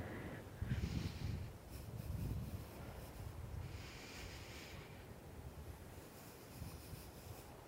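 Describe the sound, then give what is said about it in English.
Water washes against shoreline rocks in irregular surges, with a steady rushing wash and gusty wind noise buffeting the microphone. No one speaks. “This is actually strangely scary here on these rocks by the water.”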